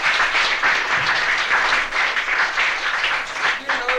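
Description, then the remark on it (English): An audience claps steadily throughout for a woman being welcomed, a dense, sustained wash of many hands at a fairly loud, even level, with no pause from start to finish. “Give her a good clap.”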